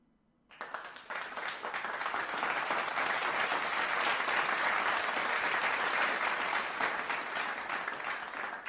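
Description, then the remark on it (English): A clapping sound effect played from a soundboard: a burst of crowd applause starts abruptly and holds steady as dense, loud clapping for about eight seconds, with no talking over it. “And then I have clap.”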